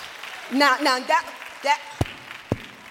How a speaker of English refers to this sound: Now that was the clapping of a sick person who does not believe.